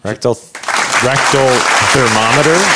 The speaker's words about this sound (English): Stop clapping. I'm trying to sell the book.